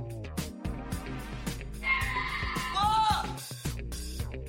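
A cow gives one drawn-out moo lasting over a second, its pitch wavering and then sliding downward, over a busy, rumbling background.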